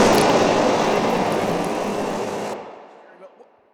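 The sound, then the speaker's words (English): A loud, dense jet engine roar fills the first two and a half seconds, then cuts off abruptly, leaving only a faint fading tail behind. “She jet out of here.”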